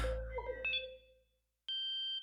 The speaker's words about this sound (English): A quiet beep interrupted the tense moment, and Doug discreetly pulled the chip card out of the computer behind his back.